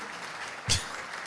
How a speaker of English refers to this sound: Louder, clap, white people.